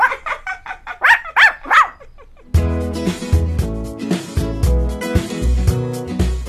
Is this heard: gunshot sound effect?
no